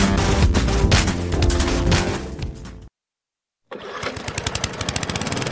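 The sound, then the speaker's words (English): A loud lawn mower engine on a cruise ship's real grass lawn at sea roars steadily, cuts out abruptly into a brief silence, then restarts with a choppy, pulsing rattle. No one speaks. “There's only one place you'll hear lawnmowers this far from land, because there's only one cruise line with ships that have up to half an acre of real, finely manicured lawns.”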